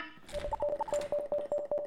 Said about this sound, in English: So just to ignore the alarm, I got to do that here real quick, fix it for you.